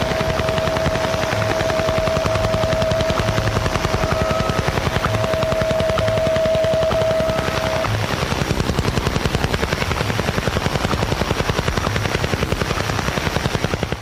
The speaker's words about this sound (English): So the woodpecker normally played at 10 hertz, so it would pulse 10 times a second. And on the radio, it sounded like this.